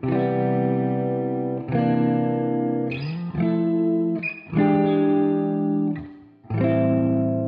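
A single electric guitar plays rich, sustained seventh chords one after another, about six changes at a slow pace, washed in reverb and effects, with reverb-soaked vocals floating above. The sound is full and steady.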